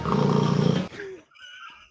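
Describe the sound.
A person mouths a cat's purr with a loud, low, rolling rumble lasting under a second, then it cuts off and only faint, thin sounds remain.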